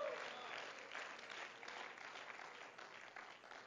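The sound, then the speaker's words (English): An audience claps their hands together in praise to the Lord, sustained, dense applause, a steady wash of overlapping claps at moderate loudness that continues without pause throughout. “Come on, let's clap our hands and give some praise unto the Lord today.”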